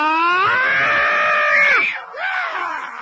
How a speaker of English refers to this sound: An exasperating yell, scream